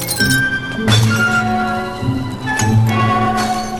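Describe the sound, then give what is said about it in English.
Glass pop bottles clink and crack together as someone breaks them to open them, several sharp, loud strikes each followed by a bright lingering ring, with no voices. “Marty's befogged brain hit on a clever way to open pop bottles.”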